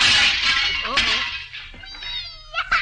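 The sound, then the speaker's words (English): Plates being juggled drop and smash with a loud, bright crash of shattering ceramic, a second burst following about a second later, then fading into a thin, high whining cry. “You don't have to juggle them, please, at the same time if you just bust them”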